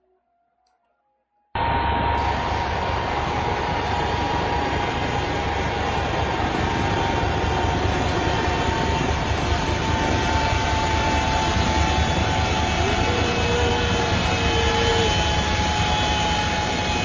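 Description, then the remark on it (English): After a second of near silence, a loud, steady airplane engine roar cuts in and holds, a dense rushing drone with a constant whine running through it and no voices: an airplane on the runway before takeoff. “This is before the plane actually took off.”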